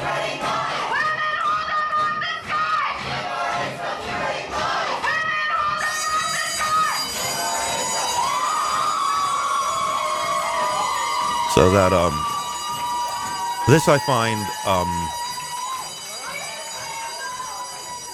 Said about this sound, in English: Obviously, that's a fire alarm that they pulled because, you know, they were not able to physically bar, they initially were able to physically bar people